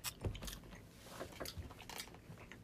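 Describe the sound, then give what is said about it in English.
Quiet crunching and clicking as people chew food, with irregular bursts of bites over a soft background and no talking. “All right, we're gonna take a second and chew.”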